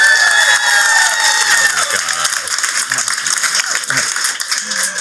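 Audience applause: dense, steady clapping that stays loud for the full five seconds, with a few high whistles and cheers rising over it.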